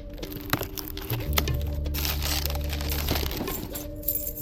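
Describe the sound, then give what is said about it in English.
Wrapping paper crinkles and rustles as a gift is unwrapped, with scattered sharp crackles and a brief tearing texture, over a low steady hum that fades out partway through. No one speaks. “So this is, should I open it, or?”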